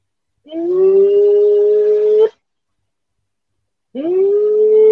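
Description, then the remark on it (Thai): A voice imitates an eerie, ghostly moan heard from a hotel bathroom: two long, steady hooting tones, the first about two seconds and the second starting after a pause, loud with no other sound. “สักพักหนึ่งเสียงในห้องน้ำมาอีกแล้วแต่ไม่ใช่เสียงของตกเป็นเสียงแบบเสียง”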